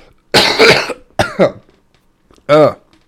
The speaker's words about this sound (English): But anyways, oh my gosh, hang on, my throat is like breaking up here for a second. I gotta do an obnoxious cough, hang on.